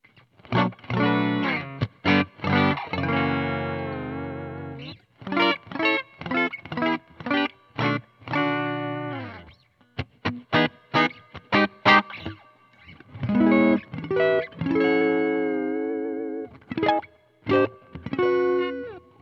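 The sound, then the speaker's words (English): A clean electric guitar tone from a Stratocaster played through a Marshall amp, on the neck and bridge pickups, plays a string of strummed chords and short picked phrases, with brief pauses between bursts. It rings clearly and fairly loud, with no voices. “Okay, that's our basic tones on neck and bridge. That's what we like to test them with.”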